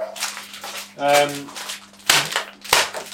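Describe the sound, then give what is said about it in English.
A microwave packet of long grain rice is beaten up before microwaving, giving two sharp smacking thuds amid steady plastic crinkling and rustling, with a brief voiced sound partway through. “Always beat up the packets first.”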